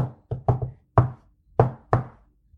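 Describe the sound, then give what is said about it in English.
A secret knock: a patterned series of sharp knocks on a hard surface, about six raps with quick clustered hits followed by slower spaced ones, fairly loud, with no talking. “Number three, secret knock.”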